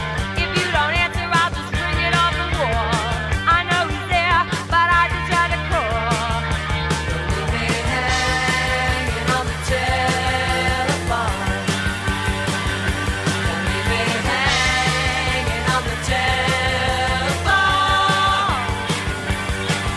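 A loud, energetic new wave rock song plays continuously at full volume, with driving drums, bass and guitars, plus a lead vocal carrying the melody throughout.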